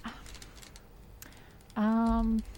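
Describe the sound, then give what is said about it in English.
Light, rapid clicking of keys being typed on a computer keyboard, followed by a loud, steady buzzing tone lasting under a second. “My keyboard is just broken.”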